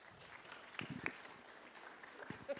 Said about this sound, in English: Would you give her a round of applause?